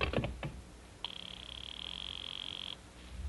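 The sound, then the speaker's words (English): A handful of quick clicks as a house telephone is dialed, followed by a steady, high-pitched electronic tone lasting a little under two seconds. No one speaks. “I'll just ring him on the house phone.”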